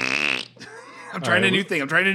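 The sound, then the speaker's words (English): A voice imitates fart noises: a buzzy, sputtering mouth sound followed by a couple of wobbly, rising and falling blurts, fairly loud, with no other talk. “I don't have a soundboard hooked up yet, but I'm just doing my own farts.”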